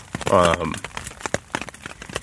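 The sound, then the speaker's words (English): Rain patters on a tent fabric at night in dense, irregular taps and crackles, steady throughout, with a brief voiced murmur early on. “As you can probably hear on the tent, it's raining right now.”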